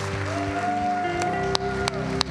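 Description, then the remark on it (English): An audience in a church building claps steadily as a hand clap of praise to God, a dense wash of applause over sustained organ or keyboard tones, with a few sharper single claps standing out near the end. “Can you give him a hand clap of praise in this building today?”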